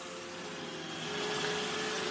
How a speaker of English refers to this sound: And there's a lot of white noise as we get into it. Let's see what we got here.